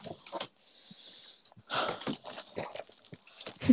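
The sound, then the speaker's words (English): Wet chewing and smacking on a chocolate sweet, with irregular crunchy bursts and mouth noises over a few seconds, nobody talking. “Like, I'm having a chocolate sweet right Interesting.”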